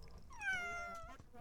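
A single drawn-out cat meow, rising and then falling in pitch, clear over a low background hum, lasting about a second.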